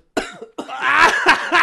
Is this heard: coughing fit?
yes